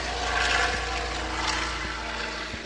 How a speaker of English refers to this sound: I'll pause this story for a second to say that the Viking fire bomber is now on the takeoff roll. Heading on southbound departure here. I don't know if you guys can hear that. How can they not hear that? I can feel it.